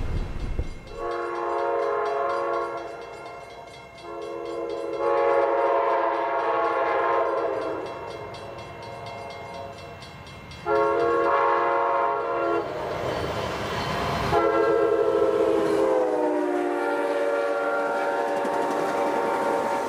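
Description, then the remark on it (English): A train travelling at quite a speed runs smoothly on continuously welded track, a steady low rumble without rhythmic clacking, overlaid by four long, loud, multi-tone horn blasts. No one speaks. “From the sound of what you can hear, it's a nice piece of continuously welded track that's pretty smooth, but we did hit one set of points just now with an almighty bump.”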